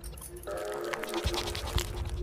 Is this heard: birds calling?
no